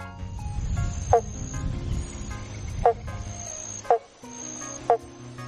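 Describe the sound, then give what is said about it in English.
Four short, hollow "bonk" calls of a banjo frog, also called the pobble bonk, sound at irregular intervals, each a quick note like a plucked banjo string, over a steady background hum and a faint high-pitched insect-like whine. “Thanks to this cute call, the banjo frog is sometimes called the pobble bonk, which sounds like something Alice might have encountered in Wonderland.”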